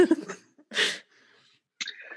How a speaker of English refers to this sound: Clear my throat again.